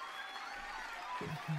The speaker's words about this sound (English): I love the applause in the background. That's awesome. that's live.